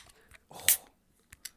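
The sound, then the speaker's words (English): A drink can cracks open with a sharp pop and a short burst of fizzing hiss, followed by a couple of faint clicks in otherwise quiet surroundings. “There's nothing got better than the ASMR sound of a can being Cheers open.”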